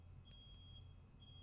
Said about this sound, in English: People are setting off a smoke alarm in my house again.